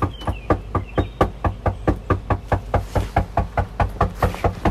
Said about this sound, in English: We headed back and knocked on the door aggressively. What do you mean by aggressively?